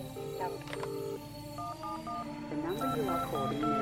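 A quick series of telephone keypad beeps opening a live concert album, each short dual tone stepping to a new pitch in an uneven rhythm, sounding over a steady, busy background murmur.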